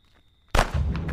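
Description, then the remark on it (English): After half a second of near silence with a faint high whine, a sudden loud gunshot blast erupts, followed by a sustained roar and a couple of further sharp bursts, as shots are fired at people at around 3 a.m. “They're shooting at us.”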